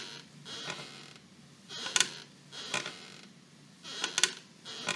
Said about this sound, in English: That's my rocking chair on the front porch.